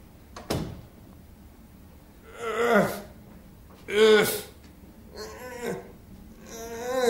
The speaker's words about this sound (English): You can shut that door there, and then this door here, and that'd be very quiet.